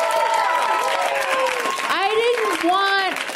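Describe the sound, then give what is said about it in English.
Steady audience applause with rising and falling whoops and cheers over it, a dense, continuous crowd noise that holds at an even level throughout. “Oh, terrible round of applause.”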